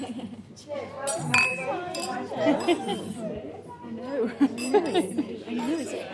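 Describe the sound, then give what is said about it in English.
Glasses clink together several times in a toast at a lunch table, bright chiming taps scattered over a few seconds amid lively overlapping chatter and voices. “Cheers. Cheers. Cheers.”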